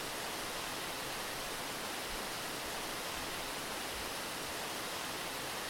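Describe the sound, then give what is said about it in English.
A waterfall's steady, unbroken rush of falling water roars evenly for several seconds, a dense hissing wash with no voices or other sounds over it. “Is there anyone guarding this waterfall?”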